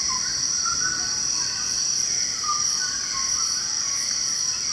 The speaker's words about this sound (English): So this is a dawn chorus, and you're just hearing loads and loads and loads of birds all calling at once as they all wake up. It's so rich. Yeah, and it's like, it is very loud. These birds are completely surrounding you, and they're up in the canopy